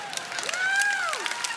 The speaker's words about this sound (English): Yeah, I don't know why. I've said some really important things, but you clap